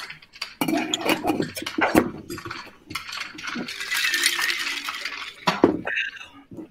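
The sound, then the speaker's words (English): A spoon gently stirs a cocktail made with beer in a glass, giving a few light, scattered clinks against the sides over a soft, steady swishing of liquid. “I like to give it just a real gentle stir because it probably mixed up a little bit by pouring the beer in, but I also don't want to like froth it up giant.”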